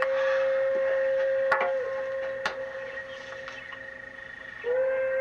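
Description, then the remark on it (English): A steam locomotive pulling an express train blows its whistle in one long, steady, piercing note that dips briefly in pitch, then swells again near the end, with a couple of sharp metallic clanks along the way. “Must be that express train.”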